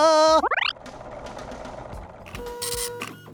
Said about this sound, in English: Carl, why don't you make yourself useful and start the riddle machine? Oh, and Carl has taken my very good advice, because I hear that familiar clinking whirl of the riddle machine firing up.